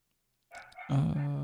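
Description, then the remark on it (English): A dog named Franklin barks loudly, a short rough yap followed by a drawn-out, tonal bark that holds steady to the end, with no talking. “I don't know what he's fucking barking at.”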